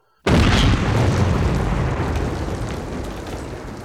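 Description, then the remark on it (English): A massive explosion of a tunnel chamber packed with explosives beneath a hill in German territory, detonated at 7 p.m. on 17 April, erupts suddenly after a brief silence: a deep, loud boom that rumbles on and slowly fades over several seconds, with no voices present. “A massive explosion threw most of the hill hundreds of feet into the air, along with many Germans and their equipment.”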